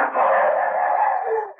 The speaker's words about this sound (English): You hear that, Duke? The dogs have got the shadow. It's lucky for us he left his handkerchief with the kids so the hounds could get the scent, ain't it, huh?